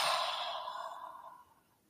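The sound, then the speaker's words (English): A single long, airy breath, like a deep sigh out, starting fairly strong and gradually fading away over about two seconds. No talking. “And just take a big breath, breathing in and exhaling.”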